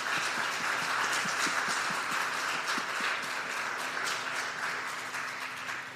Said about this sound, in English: And so I just wanted to give the elders just a big round of applause for helping us with that.